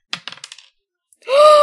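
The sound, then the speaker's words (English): A six-sided die (d6) clatters across a table in a quick series of six or so sharp clicks that speed up and fade, followed after a pause by a sustained rising vocal exclamation. “Gotta get me better dice. Okay, so it's a d6.”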